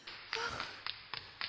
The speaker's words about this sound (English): I heard something. What? What was it? Footsteps outside your door.